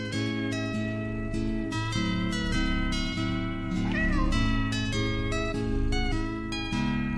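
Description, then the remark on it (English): A ginger tabby cat gives a single drawn-out meow midway through, rising and falling, set against steady, layered background music that continues throughout. “Zara has a perfect angel of a cat who's a ginger tabby”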